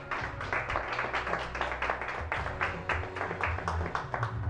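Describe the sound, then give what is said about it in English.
A church audience claps their hands together as praise to God, a dense, steady patter of many overlapping claps lasting several seconds, with a sustained low musical tone humming underneath. “If you receive that this morning, just give God a hand clap of praise this morning.”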